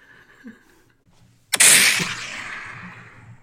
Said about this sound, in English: All right, that 20th gunshot signifies Food Court Corner.